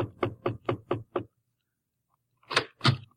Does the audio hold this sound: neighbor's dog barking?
no